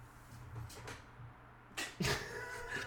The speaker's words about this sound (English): My cat's just like, what's up? What are you guys doing? Are you guys podcasting? Can I hang out?